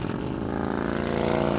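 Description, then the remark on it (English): A rumbling motorcycle engine drones steadily with a rich harmonic growl, rising slightly in pitch as it revs, loud throughout with no voices, during the motorcycle ride at Senator Joni Ernst's Roast and Ride fundraiser in Iowa. “It features a motorcycle ride, barbecue, and lots of speeches from politicians.”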